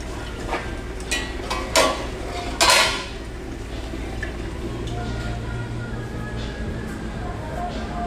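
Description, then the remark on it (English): Plates and pans clatter, with a few sharp clinks and a louder metallic clang near the middle, over a steady low hum and faint background voices. “Plate. Where's the pan?”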